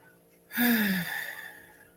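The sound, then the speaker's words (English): One deep, breathy exhale through the mouth after breathing in through the nose, done as mindful breathing. It starts abruptly with a faint falling voiced tone, then trails off softly over a second or so. No one speaks. “In through the nose and out through the mouth.”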